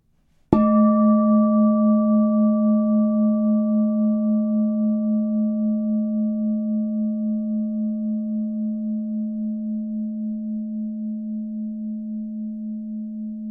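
A meditation bell is struck once during a guided Christian meditation and rings out alone, its low, steady tone slowly fading over many seconds with a gentle, pulsing waver. No one speaks.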